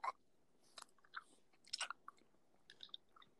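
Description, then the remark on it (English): Loud, crunchy chewing of candy: a series of irregular wet, crackling bites and chomps spaced unevenly over a few seconds, with no talking. “I just realized how loud I'm chewing.”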